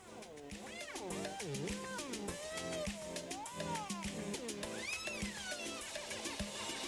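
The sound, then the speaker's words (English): A steady electronic beat with swooping, whiny high-pitched sounds that bend up and down like a screaming cat, loud and continuous throughout. “So, should I not mention that it sounds like cat screaming?”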